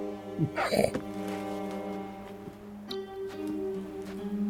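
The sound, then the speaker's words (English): A dog named Sam gives a short, sharp vocal outburst on cue near the start, a rising whine-like bark lasting under a second, followed by a steady low hum with no other sounds. “What's this dog called again?”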